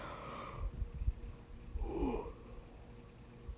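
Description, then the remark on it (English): A person yawns: a long breathy inhale, then a drawn-out, voiced exhale that wavers in pitch, with a soft snuffly breath before it and quiet afterward. “Excuse me, I'm yawning.”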